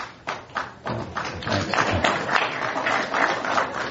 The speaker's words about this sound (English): I hope that's not the last applause I get.